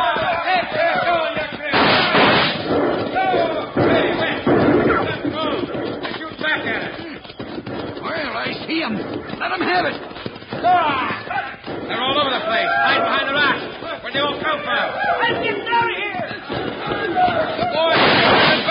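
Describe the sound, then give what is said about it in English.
Gunfire in a shootout out in the moonlight: a steady stream of sharp, loud shots and cracks, some overlapping in quick bursts, with indistinct voices and shouting mixed in throughout. “There's so much lead flying around.”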